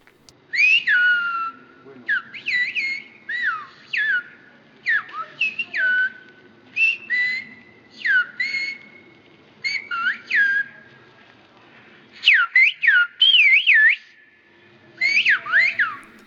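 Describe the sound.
Two people converse in whistled speech, recorded by whistled-speech expert Dr. Julien Meyer; one asks the other to open his backpack and take something out, and the other answers. Sharp, swooping, melodic whistle phrases are traded in bursts with short pauses, loud and clear against a faint low background hum.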